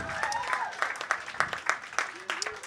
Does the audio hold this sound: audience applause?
yes